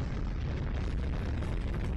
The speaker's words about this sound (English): Explosions look very cool in this game. They're very smooth.